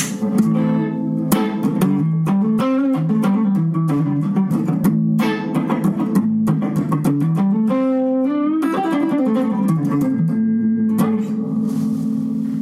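A melodic instrument played clean through an amplifier on its 50 watt setting plays a continuous phrase of sustained notes drenched in deep hall-like reverb, each note blooming and lingering into the next, loud and steady with no voices.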